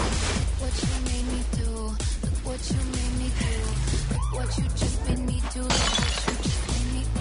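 Police sirens wail through a dense, chaotic scene in a pop song, their rising and falling tones layered over constant loud noise, bottles crashing and shattering, and indistinct voices.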